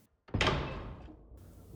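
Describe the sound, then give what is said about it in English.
After a brief silence, a door opens with a sudden loud clunk as food is delivered, followed by a sustained rumbling, scraping rush that slowly fades, with no talking. “Oh, the food gets delivered.”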